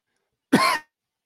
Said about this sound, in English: I'm sorry. I was trying to mute and just coughed.